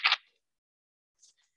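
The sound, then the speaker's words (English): A short, crisp papery snap of tarot cards being shuffled for a reading, followed after a pause by a faint, brief rustle of the cards, with no talking. “I'm going to do one more good shuffle.”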